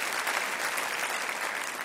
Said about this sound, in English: Yes, clap. We can clap that we are here.